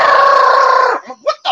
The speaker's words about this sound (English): Does your dog have a Spanish accent? He rolls his R's better than kids in goddamn Spanish class.